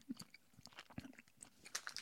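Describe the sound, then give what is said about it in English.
Wet chewing of a raspberry-flavored organic energy chew, with soft sticky smacks and small clicks, repeating in an irregular rhythm for a couple of seconds with no talking. “I know this is organic energy chews and like all the flavorings are organic, but it tastes like artificial, like when things are raspberry flavored, that's what it tastes like.”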